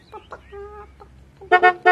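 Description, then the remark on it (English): A chicken named Christmas clucks: a few short scattered clucks, a brief steady tone in between, then a loud burst of rapid clucking at the end. “Do you want to sell that chicken?”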